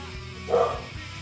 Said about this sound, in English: Oh, the dog is here. Bo in the streets. Bo is saying hello to the GAR Nation.